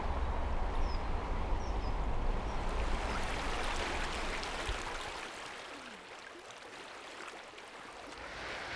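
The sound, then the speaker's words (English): A steady rush of flowing river water fills the scene, with a low rumble early on that fades, and a few faint bird chirps high above the wash. This is the river that runs past the back of Wordsworth House. “So we just come out of what seemed quite industrial, and now we're in another idyllic scene with the river running past us.”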